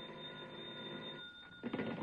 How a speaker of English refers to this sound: And then a bell started ringing somewhere and woke me out of a sound sleep.